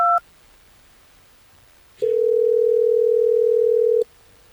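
A brief keypad beep, then after a pause a loud, steady telephone ringing tone holds for about two seconds before cutting off, as radio station Hot 101.5 calls a listener on air. No one speaks.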